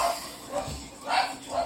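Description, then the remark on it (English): A dog trying to go out the door lets out a few short, sharp barks in a loose rhythm, fairly quiet, with faint voices murmuring in the background. “Oh, watch the door. The dog's trying to go out.”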